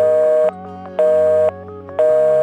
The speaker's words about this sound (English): That sound means you're busy, and they won't be able to talk to you until you get off the internet.